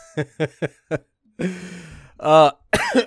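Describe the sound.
A quick run of four short chuckles gives way to a raspy, breathy cough, then two loud voiced bursts, a laugh breaking into coughing, alone.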